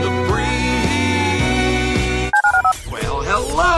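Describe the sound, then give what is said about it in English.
A quick run of telephone keypad dialing tones, four or five short beeps in fast succession, comes right after a burst of loud music, followed by warbling synthesized tones. “To call into the HRNP listener line, dial 713-780-ESPN. Dial the phone.”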